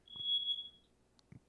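A fire alarm going off gives a single sustained high-pitched beep lasting under a second, followed by quiet room noise and a few soft low thumps.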